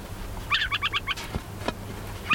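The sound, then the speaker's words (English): A tiny brown and white adult burrowing owl, no more than 10 inches tall, rising up on its spindly legs, gives a warning call: a quick, chattering burst of about five raspy, high-pitched notes, fairly loud, with another burst starting at the end over a faint low background hum. “He rises up on a pair of spindly legs, sounding a warning call.”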